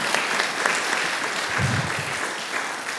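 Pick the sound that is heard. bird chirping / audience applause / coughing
audience applause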